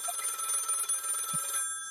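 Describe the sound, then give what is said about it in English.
A telephone rings with a rapid, trilling bell that sounds continuously for about a second and a half and then cuts off, fairly loud, with no talking over it. “What's that ringing?”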